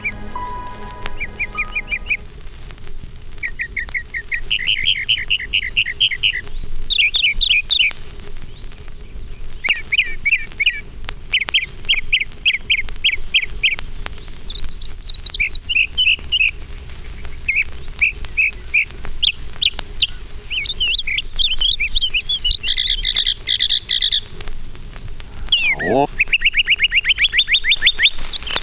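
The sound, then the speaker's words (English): An eastern meadowlark on a telegraph pole sings clear, high whistled phrases, repeated again and again for the whole stretch, each short run of slurred notes rising and falling, over a faint steady hum. “Telegraph pole is an eastern meadowlark, greeting the world in high, clear whistles that seem to fit the phrase, "It's sweet to me," or "The spring of the year."”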